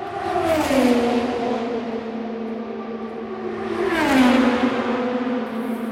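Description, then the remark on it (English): Two Indy race cars scream past at top speed, over 200 miles an hour, during the Indianapolis 500 race. Each engine whine rises and then sharply drops in pitch as it goes by, over a steady background roar with no voices. “And these are Indy cars going around the track during the race at top speed over 200 miles an hour at the Indianapolis 500.”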